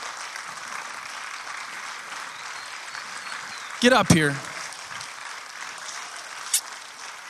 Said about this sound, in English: So I want you to get on your feet and clap for this awesome man.